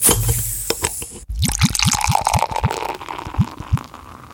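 Beer glugs out of a bottle into a glass in a quick run of rising gurgles over a steady foamy hiss, fairly loud, with no voices.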